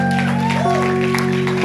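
An audience claps steadily in a dense wash of applause, blended with sustained low keyboard tones and a soft melodic line playing underneath throughout.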